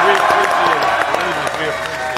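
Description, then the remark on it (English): A large college football stadium crowd of Alabama fans cheers and applauds in a loud, steady roar, with dense clapping and a wash of shouting voices sustained throughout. “but you're the greatest of all time, and you've earned everybody's yell that they've shown you.”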